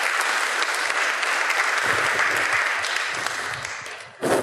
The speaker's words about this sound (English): And we're very fortunate to have these folks here. So please give them a round of applause, and then we'll go ahead and get started.